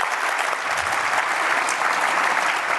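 Steady audience applause at the KB4CON event for the founder and CEO of KnowBefore, a dense wash of many hands clapping at an even loudness throughout, with no voices standing out.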